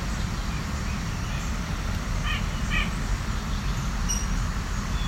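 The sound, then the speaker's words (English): Two short, nasal, mid-pitched notes from a white-breasted nuthatch, spaced about half a second apart, sounding over a steady low rumble like road traffic. “Oh, here's a fairly loud white-breast nuthatch.”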